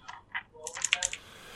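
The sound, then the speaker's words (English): A quick burst of computer keyboard typing as the word "blast" is typed in: several sharp keystrokes tapped in an uneven flurry, fairly quiet, with a brief pause before the last cluster of clicks and then near silence. “I need to actually type blast.”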